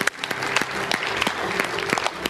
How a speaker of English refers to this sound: And let's give a big hand of encouragement and applause for those who gave their life to Christ.